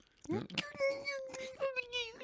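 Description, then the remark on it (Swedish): A voice mimics the scream of a dying brunöga: a brief rough burst, then a strained, high, quavering wail held for nearly two seconds with a slight dip in the middle. “Nej, som ett brunöga. Som ett mars, brunöga som håller på att dö.”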